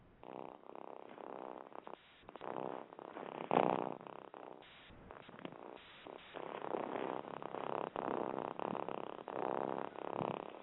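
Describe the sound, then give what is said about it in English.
A cat lying under a phone purrs steadily for about ten seconds, a low rumbling drone that swells and fades with each breath in a regular rhythm. It is fairly loud, with no talking over it. “because he's literally under the phone as I speak here, purring his absolute head off.”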